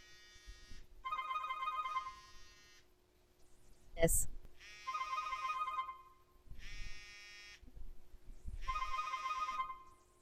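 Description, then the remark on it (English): A cell phone ringtone rings in repeated harmonic bursts as a call is placed from a cell phone, clear and fairly loud, broken by a sharp click midway. A person briefly speaks under the ringing. “So what I'm going to do is I'm going to open my cell phone, and I'm going to call”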